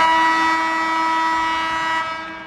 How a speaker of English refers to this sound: I really wonder if these buzzers are going to make this pod. We'll see. I don't know, but that was perfect. I timed it. Literally timed my thing so that I could finish it before the buzzer.